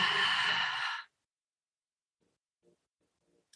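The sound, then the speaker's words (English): A single long, breathy exhale, fairly loud, fading out after about a second into near silence with only faint soft stirrings afterward, part of a guided breathing exercise of breathing in through the nose and out. “So if you would join me, let's breathe in through the nose and out.”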